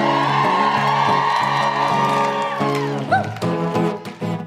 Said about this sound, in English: Woo. Thank you for the claps.